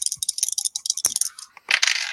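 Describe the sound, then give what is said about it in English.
Dice clatter and rattle across a hard surface in a quick run of sharp clicks, with one louder knock midway before they tumble and settle. “Whoop, where'd you go, dice?”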